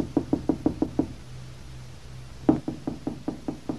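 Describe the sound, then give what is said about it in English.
Two bursts of firm knocking on a wooden rooming-house door in a dark hallway, with a card reading 'manager' thumbtacked to it: a quick run of six raps, a short pause, then seven more slightly louder knocks, with no voices. “She knocked on Anna's door, to which a card with the word manager scrawled on it had been thumbtacked.”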